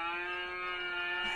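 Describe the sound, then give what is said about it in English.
A novelty mooing greeting card plays a tinny electronic cow moo, one steady, buzzy, drawn-out tone that holds evenly for over a second, fairly loud with no voices. “Does it actually moo? It does.”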